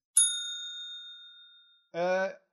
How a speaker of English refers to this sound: I'm gonna hit the bell.